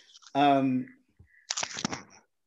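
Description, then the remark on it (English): Paper rustles in a short burst of dry, crackly crinkling lasting under a second, following a brief voiced sound at the start. “Stay still, because I keep on hearing little plastic and stuff moving when you're moving. Oh, it's my paper.”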